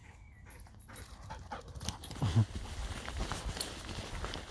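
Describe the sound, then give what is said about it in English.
A Labrador dog scampers and pounces about on a beach, with padding footsteps, scuffling and a few panting breaths over a steady outdoor background wash, like wind or surf. “We hear a Labrador.”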